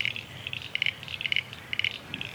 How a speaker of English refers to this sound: We can hear lots of water and frogs. Can you hear them?